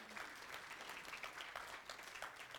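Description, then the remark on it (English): A church audience claps steadily for two new church members, a dense patter of many hands that holds at a moderate level throughout with no voices standing out. “Yeah, you can clap for them.”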